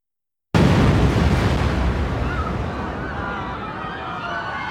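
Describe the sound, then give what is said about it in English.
After a brief silence, a bomb explosion erupts with a sudden, loud blast, followed by a deep, sustained rumbling roar that slowly fades but never dies out. It is the 1993 World Trade Center bombing, a bomb in a van on the B2 level of the underground parking garage. “12 minutes later, the bomb went off.”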